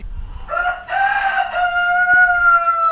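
A rooster crows loudly, one long drawn-out cock-a-doodle-doo with a strained, rising then sustained tone lasting a few seconds.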